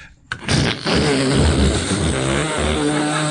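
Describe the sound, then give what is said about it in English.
A man imitates a vacuum cleaner with his voice, a loud, steady droning whir with a rough, buzzing hum that starts abruptly and holds for about three seconds. “Starting with the vacuum cleaner.”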